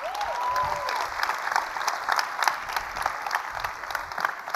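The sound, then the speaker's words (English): Sustained applause from an audience, a dense crackle of many hands clapping at steady loudness for several seconds, with a brief whistle-like tone near the start. “Let's clap it up.”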